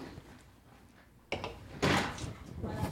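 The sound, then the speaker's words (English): A chair scrapes across carpet, starting with a sudden thump and then a couple of louder, muffled dragging bursts that rise and fade over a few seconds. “You might want to pick the chair up over the carpet.”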